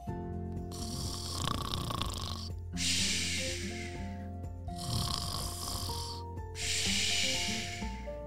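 A cartoonish snoring sound effect: four long, raspy breaths alternating in a slow, steady rhythm, layered over soft background music with sustained tones.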